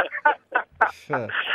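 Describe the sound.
A person trying to sing high notes imitates a strangled goose with a run of short, harsh, honking squawks, ending in a longer strained cry, fairly loud.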